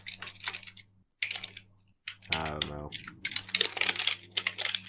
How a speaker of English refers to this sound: What are you typing over there?